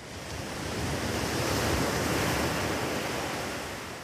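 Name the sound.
atlantic Ocean waves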